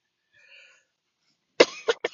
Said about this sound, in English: Excuse me. Again, I am apologizing if there's coughing in this episode. I have a fucked up cough. And I'm sucking on a Halls right now. Hoping it helps with my sore throat. And my chest is killing me.